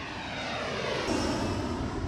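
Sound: airplane engine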